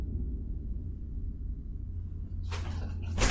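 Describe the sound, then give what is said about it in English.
A closet door opens with two brief scraping, sliding sounds near the end, the second louder, over a steady low rumble in an otherwise quiet room. “You hear your closet door open.”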